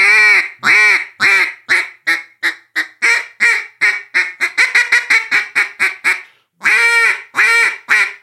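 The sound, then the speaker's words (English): Loud mallard hen calling blown on a duck call, standing on the first note: a long, held first quack, then a quickening cadence of shorter quacks, a brief pause, and two more drawn-out quacks. “When it's time to, you know, those ducks are going away and you want to stand on that first note, you're just, and all of a sudden this flock comes over your head.”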